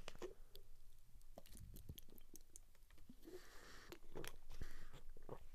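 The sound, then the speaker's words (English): Someone sips a drink, with a series of quiet wet mouth clicks, slurps and swallowing sounds spread over several seconds, no talking. “I'm going to take a sip.”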